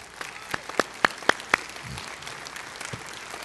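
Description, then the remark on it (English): A standing church audience applauding as a clap offering to the Lord, with several loud, evenly spaced claps standing out over a steady wash of crowd clapping that softens toward the end. “Let's stand to our feet and see if we can give the Lord a clap offering.”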